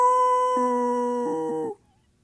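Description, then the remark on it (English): A person imitates a werewolf at night, sneaking up to the bushes to scare children, with one long, steady, fairly high howl held for almost two seconds, wavering slightly near the end before cutting off into silence. “sneak up and be the werewolf.”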